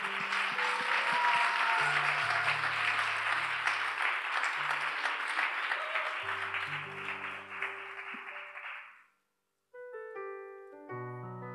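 A crowd claps in a dense, steady burst of applause for about nine seconds before fading out, with music playing underneath that carries on alone after the clapping stops.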